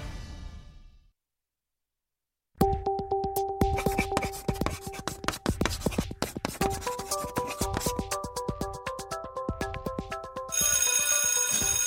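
A school bell rings loudly and continuously for about nine seconds, a rapid metallic clatter over steady ringing tones, growing harsher near the end after a short burst of noise and a pause.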